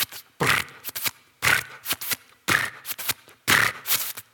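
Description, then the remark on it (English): A star's light converted into sound: four loud, breathy whooshing pulses about a second apart, with softer crackling bursts between them, forming a steady rhythmic pattern with no talking. “So sometimes it's light waves, sometimes it's sound waves, sometimes it's radio waves, and making them into sound waves.”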